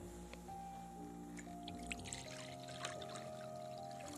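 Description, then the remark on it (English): Water pours steadily into a bowl for a few seconds, a continuous splashing stream whose ringing tone shifts as the vessel fills, with no voices. “Also, I'm going to pour some water into this.”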